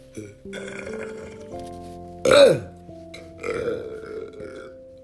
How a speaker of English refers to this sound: Excuse me, I got a burp.